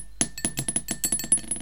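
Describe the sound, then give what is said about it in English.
Dice rattle and clatter in quick succession inside a hard, ringing dice roller made from a candle, about a dozen sharp clicks over under two seconds, fairly loud with no voices. “I have a new dice roller, which I actually made from a candle that I stole from my mom after she was done with it.”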